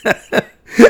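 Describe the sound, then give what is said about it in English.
Three short, harsh, non-contagious coughs from one person in upstate New York, the first two quick and evenly spaced, then a brief pause before a louder, rougher third. “It is not a contagious cough.”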